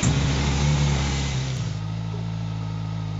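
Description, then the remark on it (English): A motorcycle engine, which has an easy start system, fires up at the press of a button without the clutch pulled in. It starts with a raised, uneven rev, then after about a second and a half drops into a steady, low, throbbing idle. “It's got an easy start system, so you don't need to pull the clutch in to start it, you just press the button.”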